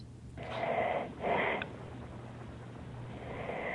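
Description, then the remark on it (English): Two heavy, rasping wheezy breaths pushed into a microphone, one after another, followed by a low hum and quieter breathy noise, with no talking. “Do you have some kind of breathing machine now”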